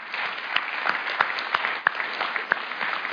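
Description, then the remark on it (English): A crowd applauds a youth band that had been singing, with steady, dense clapping that holds at an even level for a few seconds, with a few sharper individual claps standing out from the wash. “I mean, I think we should give y'all a round of applause because that was good.”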